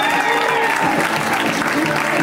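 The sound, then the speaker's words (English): A live comedy show audience claps steadily, a dense, sustained wash of applause with some cheering voices mixed in, loud and continuous throughout, as a comedian is welcomed to the stage. “Keep that round of applause going.”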